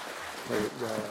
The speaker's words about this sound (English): you enjoyed that, give her a hand clap. Amen.